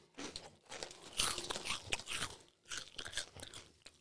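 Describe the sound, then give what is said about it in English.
Crisp crunching of Cheetos Crunchy cheese-flavor snacks being chewed, several loud bursts of crackly bites and chews in an uneven rhythm, with brief pauses between and no talking. “Cheetos crunchy cheese flavor.”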